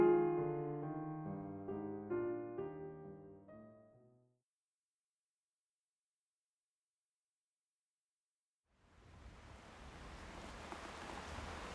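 A short melodic phrase fades into several seconds of silence, then steady, even rain rises in and keeps hissing to the end, moderately loud with no voices.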